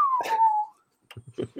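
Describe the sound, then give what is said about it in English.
A person whistles one short, clear note that slides downward in pitch. After a brief pause, a few quick spoken syllables follow. “You that got a bucket and you start whistling.”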